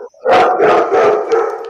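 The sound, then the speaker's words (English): A hound dog bays loudly, a run of drawn-out barking howls with a mournful, wavering tone that fills the short moment without a break. “Ah, it's a hound dog.”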